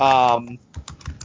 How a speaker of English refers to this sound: And sorry, but I can hear a lot of typing, just FYI.